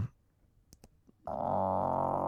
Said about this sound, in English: Dude, that was a really loud stomach growl. I'm hungry.